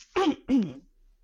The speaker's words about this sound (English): Sorry, let me just clear my throat and you take a little sip of water.